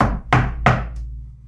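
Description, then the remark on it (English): A few sharp knocks on a door, two loud raps in quick succession with a hollow, booming body, followed by a faint lighter tap, with no voices. “Somebody's here. Finn, get the door.”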